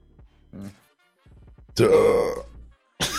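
A loud, drawn-out burp rumbles for about a second, preceded by a few short throaty grunts and clicks, with another brief burst starting right at the end.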